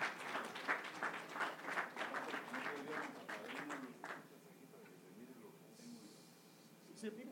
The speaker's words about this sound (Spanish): Una ofrenda de palmas al Señor.